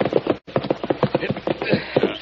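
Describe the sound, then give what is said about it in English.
Horses' hooves clip-clop in a steady rhythm of sharp knocks on a trail, with a brief break early on before the clattering continues as the horses come to a stop at a cabin. “We'd better lead the horses from here.”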